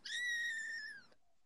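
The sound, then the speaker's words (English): A baby kitten wanting milk lets out a single drawn-out, high-pitched crying mew, fairly loud, holding steady for about a second before cutting off into silence. “He's a real baby kitten.”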